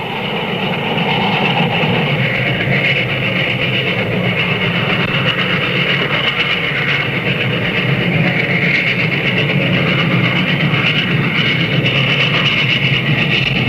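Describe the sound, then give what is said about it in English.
A steam train runs steadily on the rails, a dense, continuous rumble and clatter with hissing overtones, holding a constant loud level throughout with no voices. “through the western mountains, steam locomotives fused a sprawling landmass into a solid nation.”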